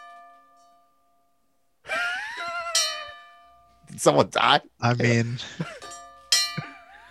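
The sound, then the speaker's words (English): A metal bell, rung as a ten-bell salute, rings with long, sustained tones that hang in the air and decay slowly, struck again partway through, while people talk loudly over the lingering ring. “Let's ring the bell.”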